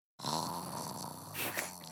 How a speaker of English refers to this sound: When she actually snores like that. She fell asleep. Okay, she's out.